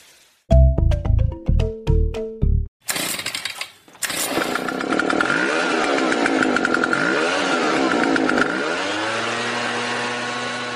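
A leaf blower's small engine is yanked several times with a pull cord, catches, and roars to life, revving up and down loudly before settling into a steady, droning run.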